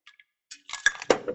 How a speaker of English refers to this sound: Then you're going to scoop some ice, put it in a little shaker, shake it up. We're gonna pour it into our little shot glass here.